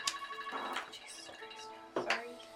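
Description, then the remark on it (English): An alarm rings with sustained, high-pitched electronic tones that hold steady throughout, broken by sharper bursts of noise at the start, around the middle and near the end. “What's that alarm?”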